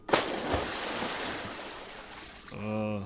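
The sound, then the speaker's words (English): A submarine, with no one on board and its door wide open, plunges into the ocean with a loud splash, followed by a few seconds of churning, fading water noise before a voice begins speaking at the end. “It's bad for them if you drop them in the water with no one on board and the door wide open.”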